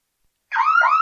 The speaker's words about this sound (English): Okay, then. Here's security siren. Alexa, open security siren.